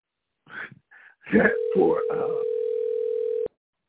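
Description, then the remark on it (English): A steady, loud telephone dial tone hums for about two seconds after a call drops, with a few brief spoken sounds at the start before the tone cuts off abruptly. “Sorry, we lost your line. I had to reconnect.”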